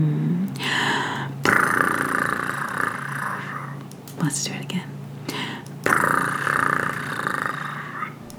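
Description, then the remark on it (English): Breathy, rumbling imitations of a cat purring from voices, in long sustained bursts with a short spoken phrase between them, steady and moderately loud. “And then the Chatterbugger stretched his paws toward the warm fire and he let out a soft Can you purr with me, my friends? Let's all purr with the Chatterbugger.”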